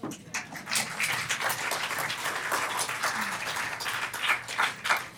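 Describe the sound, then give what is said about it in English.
A crowd claps steadily throughout, a dense wash of many hands at moderate volume with no pauses. “See, the claps were less when I said that.”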